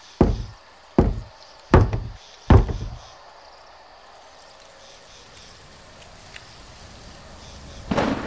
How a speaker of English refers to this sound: Then they donned masks and knocked politely at the weather-stained oaken door.